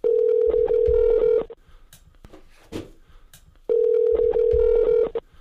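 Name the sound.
telephone dialing and ringing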